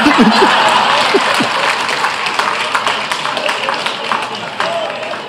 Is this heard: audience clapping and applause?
yes